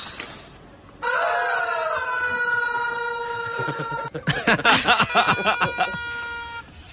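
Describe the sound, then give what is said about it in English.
A chorus of squeaky rubber chicken toys in big bins, all pushed down and squeezed en masse so they breathe out at once: sustained high, shrill honking tones that hold steady, then break into a jumble of overlapping squawks and screeches, loud throughout. “They squeak out and all at once, and it's quite a horrible sound.”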